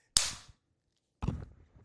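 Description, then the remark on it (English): A leather belt snaps with a sharp, loud crack, then a second rougher snap about a second later, each with a short fading tail. No voices. “They take the fucking belt and then they lapse that bitch.”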